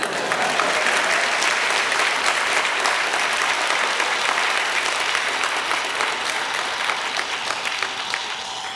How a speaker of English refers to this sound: What? This doesn't deserve a round of applause?